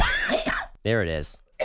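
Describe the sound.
Someone clears their throat close by with a rough, raspy burst, follows with a short voiced grunt, then a quick final cough-like huff, all fairly loud and over in under two seconds.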